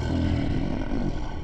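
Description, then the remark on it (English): A deep, bellowing creature roar fills the moment, loud, rumbling low and sustained without a break for about a second and a half, with no one speaking. “He looks at you for a second and then lets out a great bellowing roar.”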